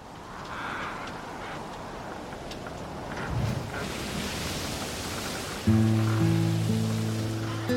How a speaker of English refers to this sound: After 5 days of hearing nothing but the ocean's dull roar, the sound stood out like fireworks in a summer sky.